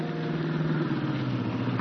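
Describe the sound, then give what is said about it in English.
An old car, a jalopy, drones steadily at night under a full moon, its low rumble and harmonic hum holding at a moderate level as the vehicle approaches, shifting into second gear and slowing down; no voices are heard. “Going into second. Has to slow down.”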